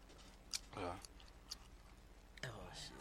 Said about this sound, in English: chewing the shit out that gum